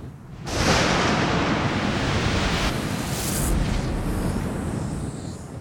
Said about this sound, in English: The sounds of lightning faded away as Monia and her purple penny board hit the ground.